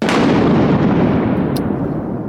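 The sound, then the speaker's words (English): A loud crack of thunder from a lightning strike bursts out sharply, then rolls on as a heavy, deep rumble that stays strong and slowly fades, with no voices. “We'll talk about Roy Sullivan and his adventures with lightning.”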